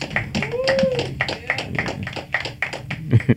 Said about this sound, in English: Everybody clap right now for …, man.